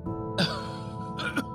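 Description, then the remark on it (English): A man breaks into a coughing fit: two harsh, throaty coughs burst out, the second a double hack, over a steady low background hum with no talking. “And broke into a coughing fit.”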